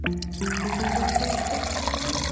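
A black, opaque liquid pours steadily from a single wooden bar pump into a glass held at a 45-degree angle, filled to three-quarters, a continuous gushing splash with a faint tone that rises slightly as the vessel fills, moderately loud with no voices.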